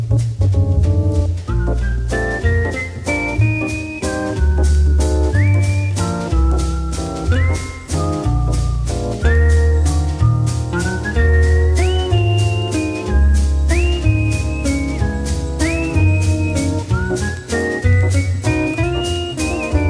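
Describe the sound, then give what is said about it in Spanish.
A man whistles a clear, melodic tune while himself strumming steady guitar chords over a bass line, a typical French waltz, loud, with no talking. “Vamos a escucharlo a él tocando la guitarra y silbando.”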